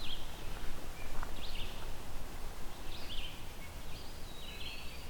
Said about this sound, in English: some red-eyed vireo here.